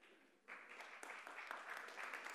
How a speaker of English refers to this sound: You're allowed to clap for that. There's no rule against it. Today is my birthday.